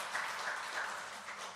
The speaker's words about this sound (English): Now, again, you clap, but when you look at that, you go, well, 19% of people have said they'd rather have vaccinated and unvaccinated gatherings.